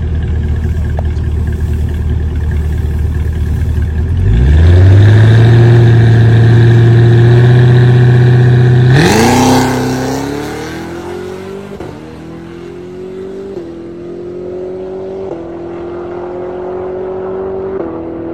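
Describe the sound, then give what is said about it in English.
A 4,400-pound car with a stock cold air intake and filter, stock wheels and sticky rear tires idles, then launches hard on a drag strip with a loud roar, climbing in pitch through several quick gear shifts as it accelerates away, steady with no talking. “Listen to this car, like really, really listen to the pass.”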